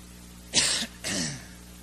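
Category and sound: human body sound, coughing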